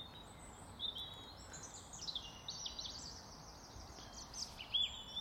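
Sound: birdsong by a lake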